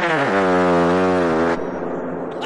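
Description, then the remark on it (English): A loud, buzzy movie-style fart sound effect stretches for over a second, its low pitch bending upward before cutting off abruptly into faint hiss. “That's just labeled movie fart.”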